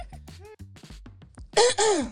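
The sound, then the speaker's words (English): Low, wordless vocal murmurs give way to a loud, harsh throat clearing right up against the microphone, rough and raspy for about half a second. “Gosh, all you ever do is just cough into the mic and breathe heavy.”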